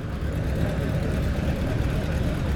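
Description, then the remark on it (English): Several car engines idle together in a steady, low rumble that fills the whole stretch, continuous, with faint crowd murmur mixed underneath. The cars are forming up to take VIPs across to St Andrew's Church in Farnham for a service celebrating Mike Hawthorne. “The cars are forming up to take some of the VIPs across to St Andrew's Church, where there is a service to celebrate Mike Hawthorne.”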